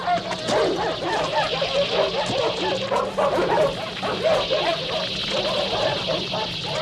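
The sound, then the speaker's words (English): Several dogs in a pen bark, yip and whimper frantically at once while being attacked by an alien dog, a dense, continuous chaotic chorus of distressed canine cries with a steady low hum underneath. “And then we see the dog, the dogs in the pen, the good ones being attacked by the alien dog”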